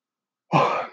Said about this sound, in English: Sorry. Had to sneeze there. It didn't actually come out. So I apologize for that.